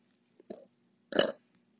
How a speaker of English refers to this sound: I have to burp, hold on.